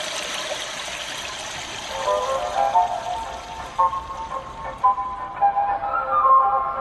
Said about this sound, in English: Japanese women were so put off by the silence in public restrooms that they'd flush the toilet over and over again to mask the noise, which worked but also used a lot of water. The solution? A device that mimics the sound of an ever-flushing toilet.